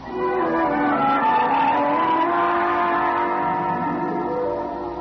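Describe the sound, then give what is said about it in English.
A car pulls away with its tires squealing loudly, the shrill screech sustained for several seconds over the engine's steady roar, with no voices. “Go ahead. It's your car.”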